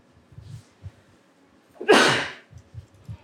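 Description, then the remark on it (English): A single sharp, explosive cough from someone who is sick bursts out loudly and trails off over about half a second, with only faint low thumps and rustling before and after it. “Believe it or not, I hate this cough.”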